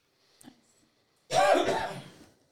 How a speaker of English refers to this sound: So, sorry about that. I had to cough.